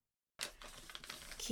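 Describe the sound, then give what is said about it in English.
After a moment of silence, rummaging begins: a quick run of light metallic clicks and clinks as keys are searched for and picked up, with a brief voice sound at the very end. “Keys, where am I? Oh, there you are.”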